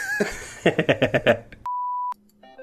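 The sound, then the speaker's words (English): A mobile phone lets out a single steady electronic beep, clear and fairly loud, lasting about half a second, just after a quick run of rhythmic clattering pulses. “What was that noise? Matt's telephone? Yep.”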